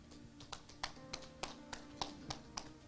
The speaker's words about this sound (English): The hands, the claps are weak.